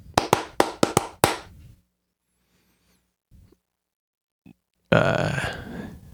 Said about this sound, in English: Stop clapping.